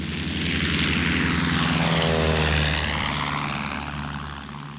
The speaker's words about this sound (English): Some aeroplanes passed over a village near us, and Mademoiselle went over on her bike and saw two.